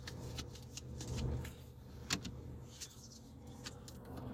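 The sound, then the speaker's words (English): A deck of oracle cards being shuffled again and again, giving soft, papery flicks and rustles at an uneven pace, quiet over a low steady background hum. “And I don't know if you guys can hear me shuffling and shuffling and shuffling.”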